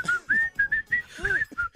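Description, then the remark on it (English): Someone whistles a short, bright tune, a quick run of distinct notes with small gaps between them, heard clearly with faint low background sound underneath. “I don't like the whistling, then the good morning.”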